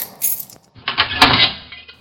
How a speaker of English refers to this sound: Time to open the safe to find a present for my daughter.